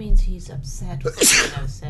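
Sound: sneeze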